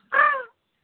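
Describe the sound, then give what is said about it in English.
A single harsh, loud crow caw from the speaker's own bird, said to sound sick, lasting under half a second with a raspy, nasal tone, followed by silence. “Oh, listen to my spooky bird.”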